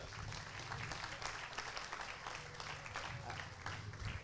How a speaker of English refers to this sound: Can you give Becca a round of applause?